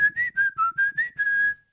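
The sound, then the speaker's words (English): A person whistles close to the microphone: six short, choppy notes in a wavering tune, then one longer held note, with audible breathy air under the pitch and no talking. “not a very good whistler”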